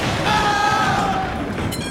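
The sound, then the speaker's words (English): A loud clattering crash as a pile of metal tools is knocked over, with ringing metallic tones that hang on and slowly fade over a couple of seconds. “Sorry, I just knocked over this pile of tools.”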